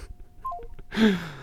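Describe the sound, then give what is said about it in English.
A quick descending series of electronic phone tones, like a call being hung up, followed by a brief burst of noisy rustle. The tones are clear, with no voices. “I couldn't let that phone call go.”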